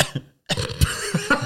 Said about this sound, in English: No, I'm not even coughing just for serious.